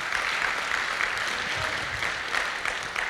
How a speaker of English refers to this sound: If you believe that, come on, give him a good round of applause today.